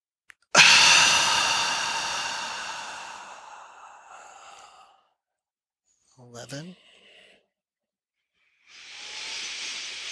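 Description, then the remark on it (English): During a guided breathing exercise, a long, hissing exhale fades out, then three quick sniffs through the nose come in a tight cluster, followed by another steady rush of breath. “Three sniffs.”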